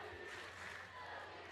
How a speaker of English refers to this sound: As was the entire Sooner crowd. Got pretty loud there.